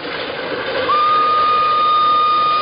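A steam locomotive rumbles and hisses, then its whistle cuts in with a loud, steady, sustained blast that lasts to the end, over continuing train noise.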